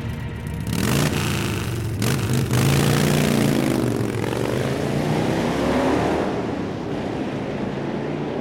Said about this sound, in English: And it's right about that time, because you've been lingering here, that off in the distance you hear motorcycle engines revving in the distance. Plural? Yes.